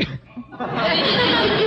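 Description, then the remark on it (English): After a brief quiet moment, a person lets out a sudden, loud sneeze that bursts forcefully and trails off. “Bless you.”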